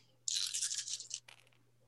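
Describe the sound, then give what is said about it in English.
A handful of eight dice, rolled for a wisdom roll, rattles and clatters for about a second in a dense, bright burst, followed by a shorter, softer scatter as they settle. No one speaks, and a low steady hum runs underneath. “So roll 8 dice each.”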